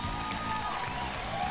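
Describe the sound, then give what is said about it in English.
Audience applause at an E3 presentation, a round of applause for Todd Howard: a dense, steady wash of many hands clapping at once, holding an even loudness throughout with a faint crowd murmur mixed in. “Can I get another round of applause, please?”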